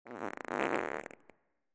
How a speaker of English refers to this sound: Other gases like hydrogen and methane are made when your food is broken down in the large intestine. All of these gases in your digestive system have to get out somehow, so they often come out as a fart.